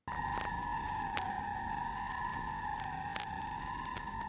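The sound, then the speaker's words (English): A sustained synth string tone from a sample called PE string holds one steady, pure pitch with a bright overtone, siren-like, while sparse vinyl crackle pops and clicks scatter across it. No one speaks. “And then this next one is called PE string.”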